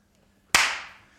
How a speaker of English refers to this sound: Hey, should we just clap?